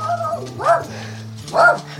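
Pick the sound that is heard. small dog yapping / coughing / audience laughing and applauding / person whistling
small dog yapping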